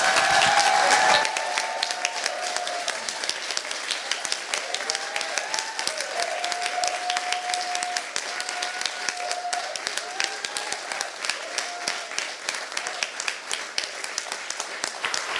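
Sustained applause from a large audience standing to celebrate a man coming forward to speak after his introduction, a dense, steady patter of many hands clapping for about fifteen seconds, with faint voices and cheers mixed underneath.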